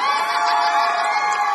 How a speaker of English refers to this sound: The crowd is all ages. Kids on their parents' shoulders, cheering teenagers, elderly photo takers.